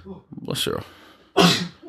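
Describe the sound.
A sudden, loud sneeze bursts out with a harsh, hissy rush of air, preceded by a shorter breathy catch, while people talk quietly around it.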